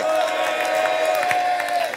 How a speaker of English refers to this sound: Clap your hands and shout glory.